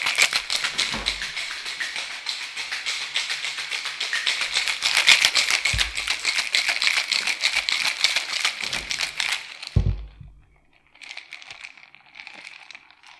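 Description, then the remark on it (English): A cocktail shaker full of ice and spices rattles hard and fast for about ten seconds as a drink is shaken, a dense, steady clatter, then stops abruptly, leaving only faint clinks and rustling. “I am going to shake the spices right in there with everything else. Okay, so let's shake.”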